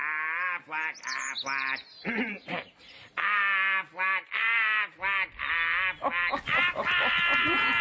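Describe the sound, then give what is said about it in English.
A duck quacks over and over in a quick, uneven series of loud, nasal calls, with no talking around it. “Everyone? Even the duck?”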